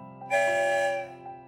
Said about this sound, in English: Oh boy, one whistle means we're on our way. I wonder where we're going today.